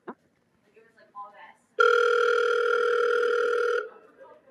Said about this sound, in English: At the tone, please leave a message. Beep.